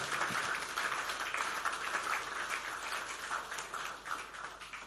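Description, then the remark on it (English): A church audience applauds for women, many hands clapping in a dense, even wash of sound that stays fairly loud for the whole stretch, with no voices standing out. “All the men who are not clapping are already run away men.”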